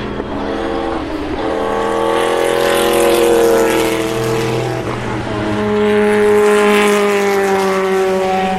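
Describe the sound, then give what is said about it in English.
Loud, high-revving race car engines roar past one after another during a race, among them a Martini Lancia, their pitch sweeping down as each passes, with a second wave of engine whine rising and falling toward the end. No talking. “Here they come. I'll be quiet so you can hear them. This is going to be a lovely sound.”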